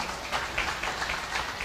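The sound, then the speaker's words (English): A round of applause as people come up to the front: dense, steady clapping from many hands forming a continuous crackling patter at a moderate, even level for under two seconds, with no voices standing out. “Y'all give them a round of applause coming up here.”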